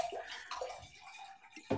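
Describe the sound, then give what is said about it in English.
Liquid is poured into a glass, a bright, gurgling trickle with rising tones that pauses briefly and resumes with a louder splash at the end. No one speaks. “I'm the only one not pouring anything because I'm sipping on H2O, high-quality Bobby Boucher H2O.”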